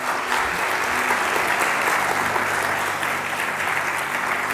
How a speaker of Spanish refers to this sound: Gloria, dile un fuerte aplauso a nuestro Dios.